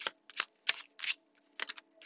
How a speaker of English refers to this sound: I am shuffling the modern witch's tarot. I cannot guarantee you'll hear me shuffling the whole duration of this reading, but based off of faith, we will go from here.